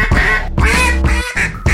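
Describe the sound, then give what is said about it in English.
A duck call blows a loud run of raspy quacks, four or so in quick succession with brief gaps, with no talking over it. “That's a duck.”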